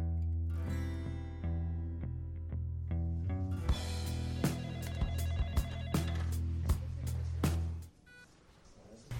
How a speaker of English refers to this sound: Can you hear that? That constant beep, beep, beep. I've been sitting here every day, waiting for it to stop. I know it's coming, I just don't know when. Beep, beep, beep. It just keeps going on and on and on